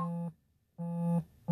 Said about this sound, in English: I wish your phone would stop that. I don't know what this. I don't know what it is either, but your phone is angry.